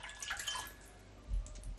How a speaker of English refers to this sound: Right, that's the orange juice measured out now, yeah, got 10 mils. Brilliant, okay, so I'm just going to pour the orange juice now into the brandy.